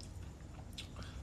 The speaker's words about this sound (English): you're always munching on something every drive. Oh, well, obviously.